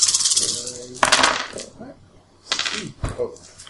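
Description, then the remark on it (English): Initiative dice being re-rolled clatter across a hard table in several quick bursts, fairly loud, with brief rattling pauses between rolls and some quiet talk in the background. “So now you're re-rolling. So you re-roll.”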